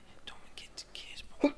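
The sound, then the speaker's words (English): A soft, stifled sneeze: several breathy, hissing intakes build up before one short, sharper burst at the end. Quiet overall, with no talking. “Oh, excuse me. Bless you.”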